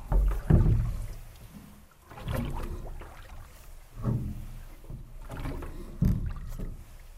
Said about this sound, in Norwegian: Sånn, det å ta et åretak og kjenne deg båten I femmer, det kjennes bra. Du gjør noe og får resultater.